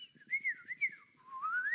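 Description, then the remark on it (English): A person whistles a birdsong imitation: a warbling, mid-to-high melody that swoops up and down in short phrases, then a longer steady rising trill at the end, with no talking. “you're thinking, oh, well, that's that bird singing.”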